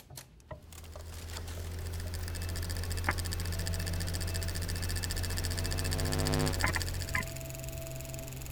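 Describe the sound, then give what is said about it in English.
A slowed-down recording of layered whispering, played on an analog reel-to-reel tape recorder, gives a dense, liquid, river-like stream of rapid clicking over a low, droning hum, steady and fairly loud throughout, with a few sharper pops toward the end. “I suddenly heard this unbelievable sound, which was a liquid, almost river-like, water-like sound.”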